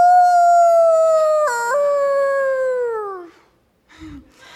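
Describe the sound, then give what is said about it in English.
A person imitates a coyote howl: one long, loud wavering note that dips briefly midway, then slides down and fades, followed by a short low vocal sound. “And it was a coyote, and a coyote is one of the most haunting noises that I think you can hear.”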